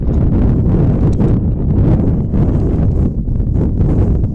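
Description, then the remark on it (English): A loud, sustained gust of wind buffets the microphone during an outdoor softball game, producing a heavy low rumble with fluttering surges that rise and fall throughout, with no other sounds breaking through. “And just because we don't need it, another gust of wind comes blasting through.”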